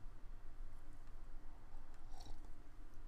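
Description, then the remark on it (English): Quiet sipping of coffee in the morning, with soft wet mouth sounds and a small slurp near the end, heard alone with no talking. “Like I said, it's morning. Let me take some coffee.”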